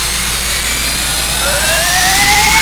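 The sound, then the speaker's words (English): A spaceship engine, fired up to maximum light, roars steadily, then a high whine climbs in pitch as it powers up, loud, with no voices. “fire up the engine. Maximum light.”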